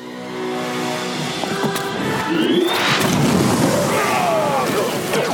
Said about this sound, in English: We knew Enfys Nest was cool, but we didn't know she was that cool, that she has a staff that just makes explosions whenever it hits the ground.